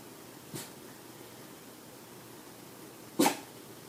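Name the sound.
sneeze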